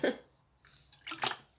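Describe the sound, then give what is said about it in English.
A short belch after drinking alkaline water bursts out at the start, followed after a pause by a couple of breathy, hissing noises. No one speaks. “I had a little slight vegan belch from this alkaline water.”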